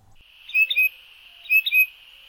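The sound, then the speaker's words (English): A songbird sings in early spring, two matching bursts of bright, high chirping notes about a second apart, each with a quick trill, clear against a quiet background with no talking. “When birds begin to sing again, you know they're getting ready for nesting season.”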